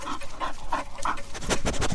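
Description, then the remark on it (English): A dog pants in quick, rhythmic breathy bursts, mixed with a few high, tonal whimpers early on, then the panting grows louder and more insistent toward the end, with no talking. “Stop drooling on me.”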